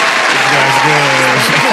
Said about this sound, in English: Long applause. Standing ovation.